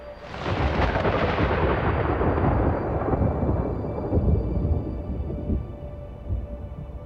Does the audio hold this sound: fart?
no